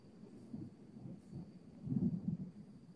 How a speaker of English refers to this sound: Shout out to the storm that's happening, because why not? I don't know if y'all hear that or not.